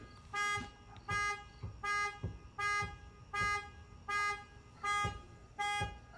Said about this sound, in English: And why the fuck is someone's car alarm going off?